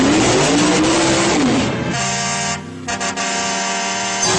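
A car engine from the 1977 thriller film The Car roars loudly, its pitch rising and dipping, then gives way to a sustained high, steady tone like tires squealing, with no voices.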